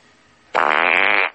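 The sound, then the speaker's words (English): A loud, buzzy fart noise, likely a mouth-made raspberry, bursts in after a quiet moment and holds for about three-quarters of a second before cutting off. “I'm going to give it a fart noise.”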